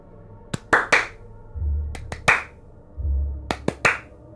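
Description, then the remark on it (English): A slow clap in three quick bursts of three, each set separated by a pause, with a low rumbling swell between groups, given by a six-armed woman who is a snake from the waist down as someone enters through big double doors. The claps are sharp, with no voices. “As a six-armed snake from the waist down woman does a slow clap on your entry, three claps clap, at clap, a time.”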